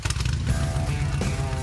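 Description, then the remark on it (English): A Harley-Davidson motorcycle engine rumbles with a deep, throaty, steady idle, its low pulsing tone loud and continuous throughout the short moment. “Next up, you know the feeling, you know the sound, you know what it's like to ride a Harley Davidson motorcycle.”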